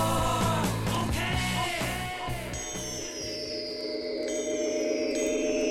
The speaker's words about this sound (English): he brought his art synthesizer into the studio and fashioned by hand, because that's how it was done in those days, the iconic pulsating sine wave intro